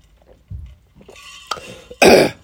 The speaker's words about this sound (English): Excuse me. See, I told you guys I'm going to have a shitty cough or a shitty voice.